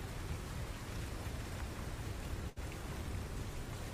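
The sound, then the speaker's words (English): Heavy rain of a battering morning storm pours in a dense, steady roar that fills the whole clip, loud, broken only by a momentary dropout partway through. No voices are heard. “The morning passes in this battering storm.”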